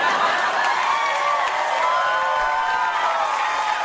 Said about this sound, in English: Crowd goes wild. That's after a long setup to that punchline.